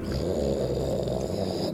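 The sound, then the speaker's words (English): A voice imitates a stone rumbling noise heard as the character Steel Scar steps into water: a low, gravelly, continuous growl held steadily for about two seconds, fairly loud, with no words spoken. “as Steel Scar steps in the water, you hear a, like, stone rumbling noise.”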